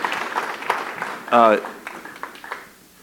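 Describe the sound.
Audience applause welcoming a guest speaker, a dense, steady patter of many hands clapping, with a single voice briefly whooping in the middle before the clapping thins out toward the end.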